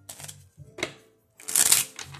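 A deck of cards being shuffled: a short riffle, a quick snap, then a louder, longer burst of crisp fluttering cards, with no talking.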